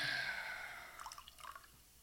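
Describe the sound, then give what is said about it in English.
Water pours into a glass with a steady, slightly ringing trickle, then breaks into a few scattered drips and splashes before fading out. Fairly quiet, with no voices. “Is it Tim and Eric when they're pouring the water into the glass?”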